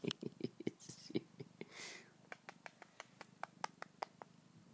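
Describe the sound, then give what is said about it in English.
A cat purrs with a soft, steady low rumble as it nuzzles a person, overlaid with many sharp clicks and taps from handling and a brief rustling burst partway through. “Nuzzling and mauling me. Why don't you look at that? I'm forming a bond with a cat.”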